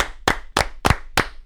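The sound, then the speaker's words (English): A single person clapping: five sharp, loud claps in a steady, even rhythm, about a third of a second apart, with no voices, given as a round of applause for Scott McBrien. “Let's give one more round of applause to Scott McBrien.”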